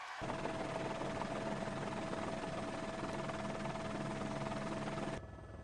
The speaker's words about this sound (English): I don't know what this is. This is just a truck driving through on a road, helicopter. This is the Border Patrol.